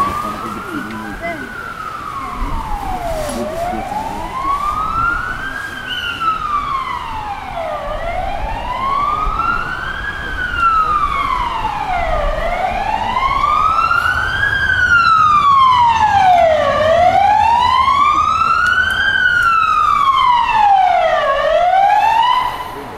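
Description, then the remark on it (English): A Toyota RAV4 safety car arriving at a hairpin, its wailing siren sweeping up and down in slow, steady cycles, about five rises and falls, growing gradually louder over a low rumble of engine and road noise. “It's a Toyota RAV4 safety car arriving at the hairpin.”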